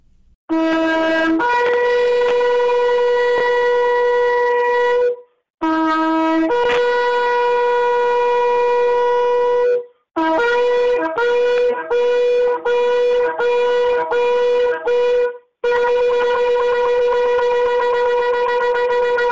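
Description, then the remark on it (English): A shofar is blown loudly during a prayer, with no talk: three long, brassy blasts, then a rapid string of short staccato notes, ending in another sustained wail. “I ask, Lord, that upon the sounding of the shofar, that you, God, would enter into this battle and you would fight for us.”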